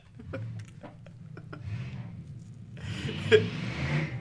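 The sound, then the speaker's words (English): A loud car with a rough, unmuffled engine and a bad muffler rumbles low and steady, then swells into a harsher roar as it passes by, with a few faint clicks early on. “You got a loud car. Shit. You need to change your muffler.”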